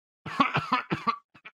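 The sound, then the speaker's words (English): A man's voice imitates a harsh old-man cough: a rapid series of about five rough, hacking bursts, fairly loud, trailing off into two softer short coughs. “Not COVID related, just the classical old man cough.”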